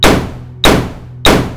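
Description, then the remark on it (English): Three loud gunshots fire in a steady rhythm about half a second apart, each a sharp crack followed by a booming, reverberant tail. No voices. “A loud bang punctuated our mirth and merriment.”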